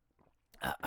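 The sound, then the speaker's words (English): A noisy slurping sip of hot coffee, two quick airy pulls with a brief break between them, after a faint moment of quiet mouth sounds. No one talks. “One sec, I want to sip this coffee.”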